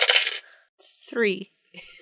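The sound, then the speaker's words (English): Dice are rolled for a notice check, clattering and rattling across a hard surface in a few bright, crisp bursts, broken by a short gliding voiced sound in the middle before a final light rattle. “All right, roll a notice check for me.”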